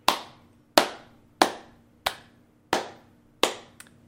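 Slow, steady hand claps, six crisp and evenly spaced with a faint seventh trailing off, from a single person clapping alone at close range with no talking.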